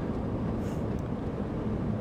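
A truck passes on a road: a loud, steady, deep rumble with a broad roar over about two seconds, a faint high whine riding on top, and no voices.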